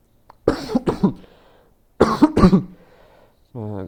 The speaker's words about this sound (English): I'm sorry for the cough.